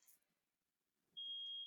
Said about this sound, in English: What are these noises? I believe that my smoke alarm is going off. I think there's either a fire in my apartment and I'm about to die, or there's cooking going on. It seems to have resolved itself.